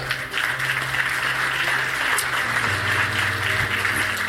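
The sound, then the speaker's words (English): An audience claps steadily in praise of God, a dense, even wash of applause that holds for several seconds over a low, sustained keyboard or organ tone. “And if you can do me the distinct privilege of just one more time giving God a hand clap of praise for everything that he's doing for you.”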